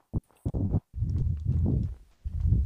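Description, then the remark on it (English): Hooves of a fast horse clip-clopping in a quick, uneven run of heavy low thuds, fairly loud, with short pauses between bursts and no voices. “Good ass horse, you're not gonna cap. Bro, that horse is fast as fuck, bro.”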